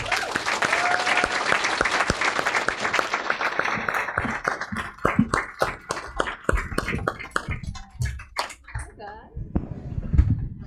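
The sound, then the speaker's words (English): An audience in Washington, D.C. applauds to welcome journalists Beck Dory Stein and Julie Pace, a dense burst of clapping that gradually thins out into scattered individual claps as it fades, with a few voices murmuring near the end. “So, ladies and gentlemen, please join me in welcoming Beck Dory Stein and Julie Pace.”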